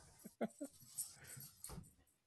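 A dog outside whines and whimpers in a few short, strained bursts, wanting to be let back in, fairly faint and with no one talking over it.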